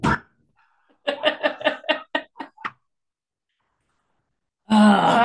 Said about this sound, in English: I heard the neighbor's dogs out there too. You probably can still hear her barking even though she's in the other room.